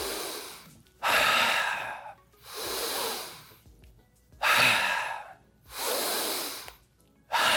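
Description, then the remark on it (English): Four deep, audible breaths in a row, each a long airy rush of inhaling or exhaling, with short silent pauses between them and no talking. “So we have people, we'll have them stand and we'll have them bounce in place and close their eyes and take 10 deep breaths.”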